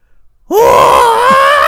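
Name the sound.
imitated scream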